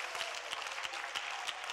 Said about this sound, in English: Woo! Somebody clap unto the Lord and rejoice.